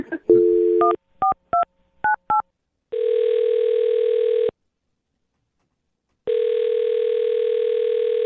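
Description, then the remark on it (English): On the Brook and Jubal in the Morning radio show, a host dials a man's phone number for a second date update: a dial tone, then a quick series of touch-tone beeps as the number is keyed in, followed by two long ringback tones with a pause between them. No one talks. “I'm going to dial his phone number right now, get him on the phone, and get your second date update.”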